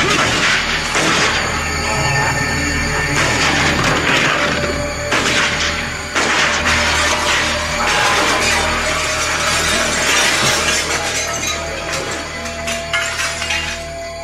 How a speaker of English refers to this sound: she, without hesitation, shot him 4 times in the chest, knocking him through the store window.